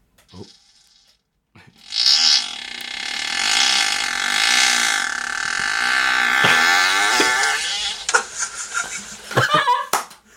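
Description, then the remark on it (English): A long, loud recorded fart, previously posted on Audioboo: a sustained buzzing, fluttering rasp lasting several seconds, then trailing off into a few short, crackly sputters. “You've heard that fart on regular features before.”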